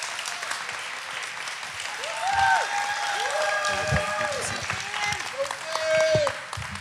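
An audience applauds steadily for several seconds, a dense, continuous wash of clapping punctuated by rising and falling cheers and whoops that swell louder toward the end.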